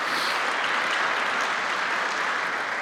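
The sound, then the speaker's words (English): A large audience at a morning church worship service claps together in sustained, dense applause in praise of the Lord, a steady wash of many hands lasting the whole stretch with no voices standing out. “Can we give a hand clap and praise to our Lord and Savior this morning?”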